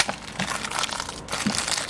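Soap going into a washing machine: a steady stretch of dry crinkling and crunching, like a packet being squeezed and powder pouring, with a couple of soft thumps and no talking.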